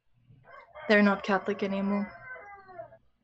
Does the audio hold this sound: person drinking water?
no